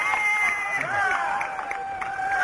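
A marathon crowd cheering runners on during the last few miles of the race, many voices shouting and whooping at once in a steady, bright roar that holds at an even, fairly loud level without a break.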